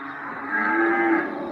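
A single long, drawn-out cow moo, loud, swelling in the middle and holding steady before fading slightly at the end, with no talking.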